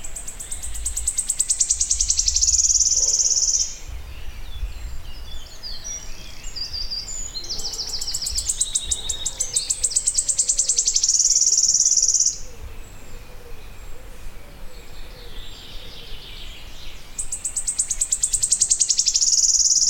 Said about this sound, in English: Like a wren, he puts his head back, shivers his wings, lifts his beak to the sky, opens it, and lets out this incredible machine gun fire dripping from his tree. It's from a very tall oak.